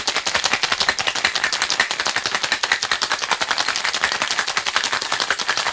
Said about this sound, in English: 1 ounce of the Fernet Branca, 3/4 ounce of lemon juice, and 3/4 ounce of simple syrup. Put your lid on your shaker and give it a good shake.